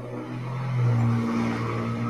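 A heavy truck engine rumbles low and steady, swelling briefly louder midway as it passes by outside, then holding a droning hum; no one speaks.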